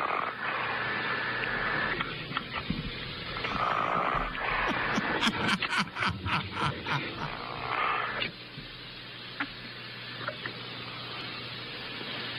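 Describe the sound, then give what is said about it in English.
A coach's muffled, rhythmic snoring comes through a narrow, tinny phone line, a run of rasping breaths swelling in the middle before fading back into a steady hiss of line noise. “Or snoring? Snoring.”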